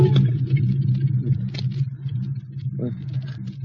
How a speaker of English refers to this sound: Car. Monoxide fumes. Turn off the ignition.